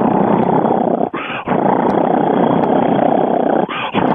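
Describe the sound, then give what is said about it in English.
A person imitates a loud, rumbling cheetah purr, a continuous rough growl with two brief breaks for breath. “A cheetah will purr. It's so loud, you'll think it's roaring.”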